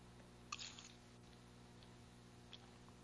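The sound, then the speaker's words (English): A single soft, wet gulp of someone swallowing a drink of water, followed by near silence and one faint click. “Let me take a swallow of water.”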